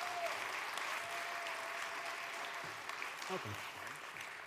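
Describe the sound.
Steady audience applause fills the whole stretch, a dense wash of clapping at an even level, with faint voices and a brief shout mixed into the crowd noise.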